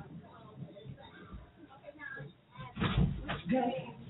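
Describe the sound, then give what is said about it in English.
Loud banging on a door, a short cluster of heavy thuds near the end, with muffled voices and background noise running underneath. “Oh, somebody is damning on my door like they the police.”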